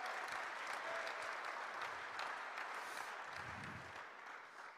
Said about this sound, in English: I think it's a good time to clap and just give the Lord.